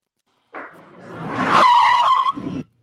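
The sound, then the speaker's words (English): A loud, drawn-out squeal of car tires skidding in a played commercial, rising over a couple of seconds with a sustained screeching tone before cutting off abruptly; no voices accompany it. “Do you have insurance on this car?”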